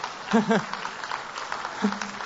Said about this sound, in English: Give the man a round of applause.